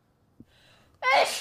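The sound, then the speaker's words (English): A single loud sneeze bursts out after a brief sharp intake of breath, with a wheezy build-up leading into the explosive release. “Bless you.”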